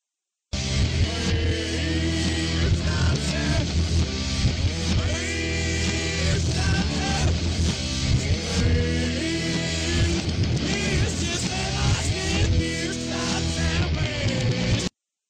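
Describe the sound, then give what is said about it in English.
The original studio version of a Christmas song played backwards, loud and continuous, with swelling reversed notes and garbled, wordless vocal sounds running through the whole stretch. “if you play the original studio version backwards, there's a part that goes, "Scream, Santa, scream, this is where I hit you."”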